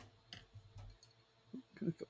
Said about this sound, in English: That's some hairspray. Is that dry shampoo? It's dry shampoo. How'd you know it was dry shampoo?